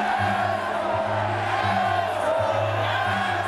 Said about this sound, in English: Is this when the entire crowd outside the stadium, the city of Chicago, it looks like, yeah, just starts chanting asshole?